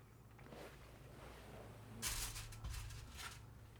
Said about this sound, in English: And this will be a really enjoyable part for people to listen to. Just us chewing. Milk chocolate with brownie cream filling and caramel pieces.